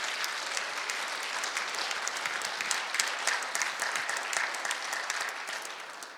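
An audience claps steadily for several seconds for a contestant's mother in a program choosing the most important person at Christmas, a dense crackle of many hands at fairly even loudness, easing off slightly at the end. No one speaks over it.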